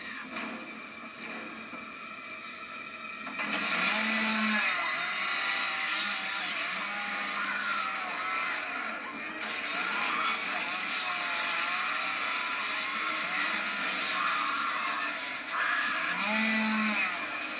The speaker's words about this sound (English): The chainsaw. Chainsaw the bitch.